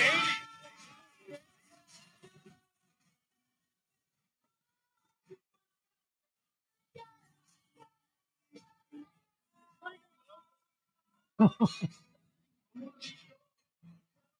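A man sings a pop song karaoke-style, opening with a loud, sustained phrase, then drifting into scattered short sung notes broken by silences before a strong burst of voice near the end.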